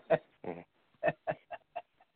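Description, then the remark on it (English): A white pet bird calls out in a series of about six short, harsh squawks, the first ones loud, then shorter and quieter as they tail off. No one talks. “We got a white bird.”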